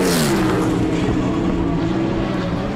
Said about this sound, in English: Sounds like you're in an IndyCar race. It sure did.